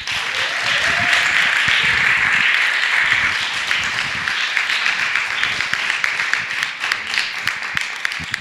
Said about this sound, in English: Thanks to all of our storytellers tonight, but please clap your hands